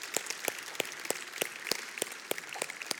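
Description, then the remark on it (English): A round of applause for God after a prayer: a dense wash of many hands clapping, with sharp, louder claps standing out at a steady rhythm of about three per second. No one speaks. “Hey, can we give God a round of applause for that?”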